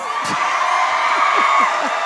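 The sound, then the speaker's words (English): A wife cheers and whoops loudly, her voice rising above a steady wash of crowd noise for a couple of seconds, with no clear words. “She's cheering.”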